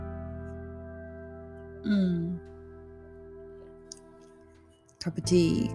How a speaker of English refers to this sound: I've currently got a cup of tea with me. I'm just sipping it, ready?